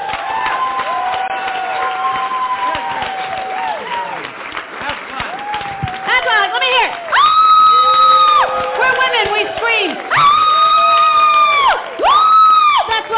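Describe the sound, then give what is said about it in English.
A large audience at a comedy show cheers and claps in a steady roar as a comedian is welcomed to the stage, with loud, high-pitched screams and whoops breaking out repeatedly over the crowd noise, especially in the second half. “We like to scream for no reason.”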